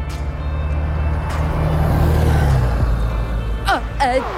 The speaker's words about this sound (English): That was my bus. Sorry, I gotta go.